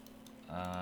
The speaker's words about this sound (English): I'm not gonna even press the stop button here. We're gonna get some keyboard ASMR in. I need to sign into my other account.